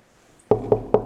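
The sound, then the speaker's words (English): Three firm knocks on a door in quick succession, fairly loud, each a solid wooden thud, following a brief quiet moment with no voices. “Knock on the door, ring the doorbell, wait.”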